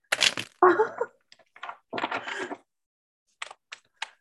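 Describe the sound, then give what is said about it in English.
Cards being shuffled: bursts of papery riffling and crackling, then a few short, sharp snaps as the deck is tapped, with brief pauses between and no talking. “But look, I am shuffling the cards.”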